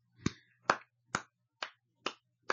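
hands clapping

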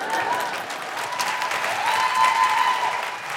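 audience applause

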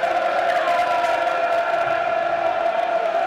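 stadium crowd cheering

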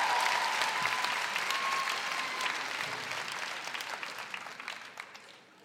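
audience applause

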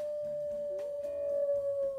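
coyote howl

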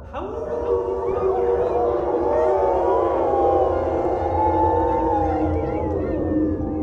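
wolves howling

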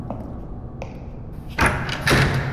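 door opening and closing

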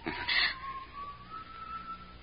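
someone whistling a tune

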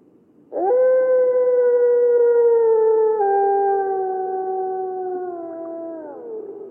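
wolves howling

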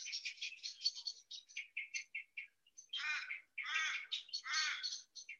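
small birds chirping

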